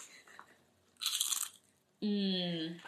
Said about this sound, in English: I'm going to eat these jalapeno chips if anyone wants some. Is this too loud for the... No. Do it closer. It's the ASMR for you. ASMR. Yeah. Here you go, guys. Kettle chips, jalapeno flavored.